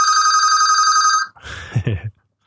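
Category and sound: signal or alarm, old telephone bell ringing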